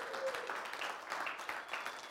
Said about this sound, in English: Give the ladies a big hand clap for doing that, would you?